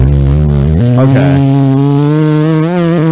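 A loud, drawn-out buzzy fart noise made with the mouth, a steady rasping drone lasting about three seconds. Its pitch jumps up slightly early on, then holds.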